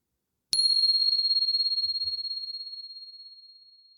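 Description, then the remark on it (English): A single clear strike of a meditation bell during a metta meditation practice, its bright pure tone ringing out alone and fading slowly with a gentle wavering shimmer over several seconds. “And here comes the bell.”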